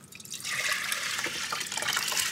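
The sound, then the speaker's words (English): Tap water runs steadily into a pot, to be boiled for basmati rice, a continuous bright hiss and splash with no talking, even in level throughout. “Now we need to boil up some more water for the rice.”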